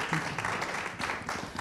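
A show audience applauds steadily to welcome a guest, many overlapping hand claps forming a dense, continuous crackle at moderate loudness with no voices on top.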